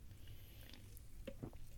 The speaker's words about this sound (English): Okay, next question. Let me get another sip of Diet Dr. Pepper here.